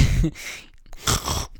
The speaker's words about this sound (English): Yeah, dude, was that hot or what? Me fucking swallowing my fucking nose snot